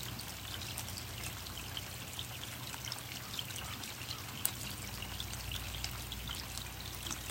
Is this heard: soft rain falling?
yes